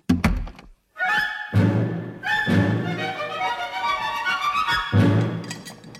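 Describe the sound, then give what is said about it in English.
A quick burst of hard knocks on a door opens, then a loud, buzzy honking tone takes over and carries on to the end, with a few more dull thuds under it. “Mommy's got to go see who's at the door.”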